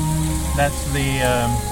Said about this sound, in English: That's the elephant of the Jungle Cruise for this ride. As he's taking a shower. Yeah. He doesn't have his trunks on.